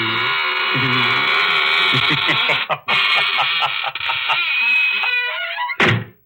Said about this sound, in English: Well, now I guess it's really time to close that there squeaking door.